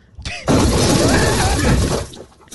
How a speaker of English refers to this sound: He opened, like, a minivan door that was immediately sheared off.